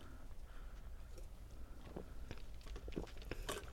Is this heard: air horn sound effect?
no